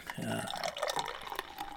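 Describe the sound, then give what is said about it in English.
A 6% coconut brown ale from a can pours into a bottoms-up pint glass, poured for extra head, a steady splashing, gurgling stream lasting a couple of seconds, with a faint murmur of voice underneath. “And into the bottoms up pints it goes.”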